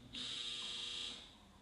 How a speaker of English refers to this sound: So, y'all just heard our dryer off, so we have to finish quick.